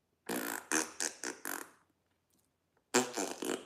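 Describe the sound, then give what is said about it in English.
A fart sound in two sputtering bursts, about five quick buzzy pulses, a pause, then four more, loud and raspy with no talking. “Squeaky bum.”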